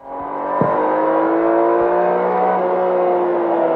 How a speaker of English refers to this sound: I wonder what it sounds like. I wonder. What do we have here? Oh, in fact, it's my Lambo.